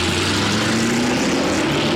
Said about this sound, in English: Well, you're sitting there digesting your Bavarian cream donuts, but all of a sudden this jacked up Firebird red 1971 Firebird goes roaring by.